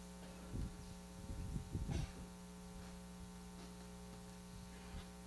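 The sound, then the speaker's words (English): A steady electrical mains hum drones through a sound system from start to finish, loud and constant, with a few brief low thumps and rustles near the beginning and no one speaking. “I got a bad hum over here somewhere.”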